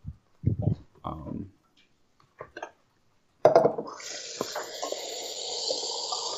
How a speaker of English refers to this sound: You having some water there? I'm getting some water there, bud. Gotta stay hydrated.